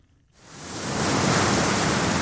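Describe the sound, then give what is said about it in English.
North Atlantic ocean waves below an Irish clifftop, by the restaurant Smuggler's Creek, rush in after a moment of silence, swelling into a loud, steady roar of surf that continues without a break. No voices are heard. “On an Irish clifftop looking out at the North Atlantic Sea sits an award-winning restaurant, Smuggler's Creek,”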